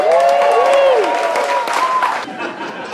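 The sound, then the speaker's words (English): An audience at a stand-up comedy show by the ocean bursts into loud, sustained applause for a comedian, with whoops and cheering voices rising over the clapping, fading slightly toward the end. “Please put your hands together. A warm round of applause for Harland Williams.”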